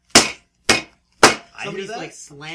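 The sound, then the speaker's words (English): A front door slams three times in quick, evenly spaced succession, each bang sharp and loud with a brief decay, and then a person starts talking. “Somebody's slamming the door.”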